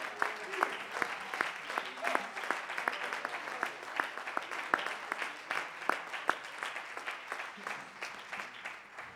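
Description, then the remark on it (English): A church audience claps their hands together to give God praise, in a steady, dense patter of many overlapping claps, holding an even loudness for about nine seconds without a break. “Would you clap your hands for just a moment?”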